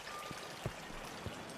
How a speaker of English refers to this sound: Once on the other side, we can hear the sound of water. And upon reaching closer, we realize that this sculpture is actually a waterfall. In front of us, standing tall, is the Wellington Fountain.